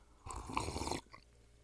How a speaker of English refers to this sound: And hold on, coffee sip.